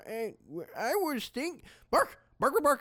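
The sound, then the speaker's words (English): A voice imitates a dog barking, producing about six loud, yappy barks and whining yelps in an uneven rhythm, with short pauses between them. “Bark.”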